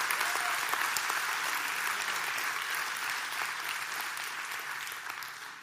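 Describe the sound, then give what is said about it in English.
An audience at a pastor's talk gives steady, sustained applause, a dense wash of many hands clapping at an even level for several seconds before tapering slightly at the end. “You don't have to clap.”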